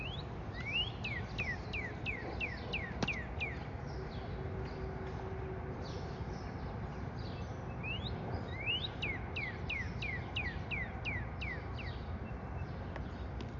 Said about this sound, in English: A few weeks ago, I saw a cardinal outside my window and saw its belly protruding and its beak opening and realized that it was making its bird call. And now I know what a cardinal sounds like. And now I'm going to share it with you.